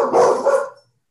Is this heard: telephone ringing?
no